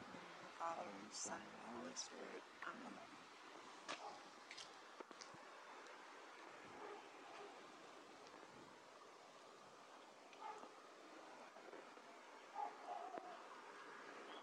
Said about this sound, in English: Harry's dog has been barking quite a bit today. Hmm. Wonder if there's some work over in the right of way. Yeah. Or maybe these guys with the windows. Smells them or something.